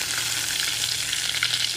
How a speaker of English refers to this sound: Not really chilling, but I'm cooking. It's Sunday. And right now, I'm melting some butter.